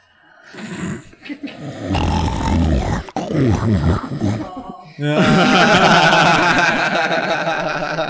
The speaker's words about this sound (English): She heard herself snoring and woke herself up.